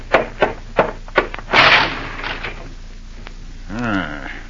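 A car crashes into a lamppost in front of a house: a quick series of sharp thuds, then a loud burst of smashing, rattling noise that fades out. A brief wavering, whining tone sounds near the end.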